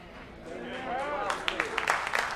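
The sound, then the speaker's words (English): A voice is heard briefly during a Bible teaching, then an audience starts clapping: scattered, irregular claps that build into a moderate patter over the last second or so. “You don't have to clap.”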